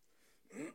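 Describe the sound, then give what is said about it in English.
A single short throat clearing, a quick rough burst that rises and cuts off after a moment of near silence. “Just clear my throat.”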